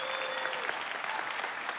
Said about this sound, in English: If you are here in person, would you get loud? Clap your hands.